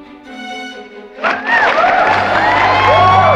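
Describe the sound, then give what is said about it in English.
After a brief held tone, a crowd bursts into loud, sustained applause and cheering, with whoops and whistles rising over the clapping until the end. “And applause.”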